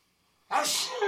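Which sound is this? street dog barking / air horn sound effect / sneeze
sneeze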